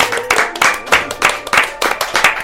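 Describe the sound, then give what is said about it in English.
Audience applause, a brisk run of overlapping hand claps that rises and falls in quick, fairly regular bursts, moderately loud with no voices on top. “Let's make some noise for Miss Gloria Neal.”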